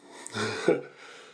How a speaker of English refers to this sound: A flow experience, should I mention every time I take a drink? I feel self-conscious. I'm taking a sip of water, and I'm thinking I have to mention that. Because there's dead air.